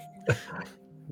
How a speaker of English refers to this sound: That was me clearing my throat, not him.